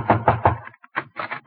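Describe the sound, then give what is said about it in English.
Three firm, evenly spaced knocks rap on the wooden door of the house next door in quick succession, fairly loud, followed after a short pause by a few softer, scattered knocking sounds. “I'll knock on the door.”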